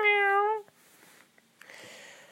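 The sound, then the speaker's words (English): A single cat meow, loud, with a clear tonal pitch that lasts about half a second, followed by quiet background noise and a faint rustle. “she'd never think about herself, about anyone other than herself and her cats, Bob, meow, and Fritter”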